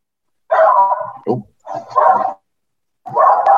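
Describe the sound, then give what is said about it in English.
A dog barks in three loud, drawn-out bursts separated by short pauses, with no other sounds around it. “Obviously, the dog agrees.”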